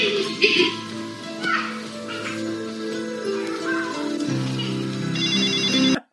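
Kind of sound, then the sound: signal or alarm, telephone ringing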